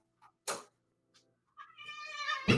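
A cat meows insistently to be let out, a short faint chirp followed by a sharp cry, then a long rising, drawn-out meow ending in another loud burst, with no talking.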